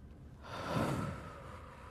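A slow, deep breath drawn in as part of an ASMR breathing exercise, swelling broad and airy to a peak midway before easing off, with no talking.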